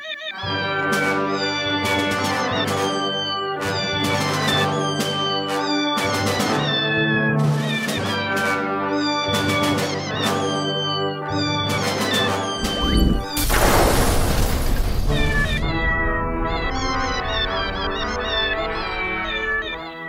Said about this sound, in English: Are those fucking cats?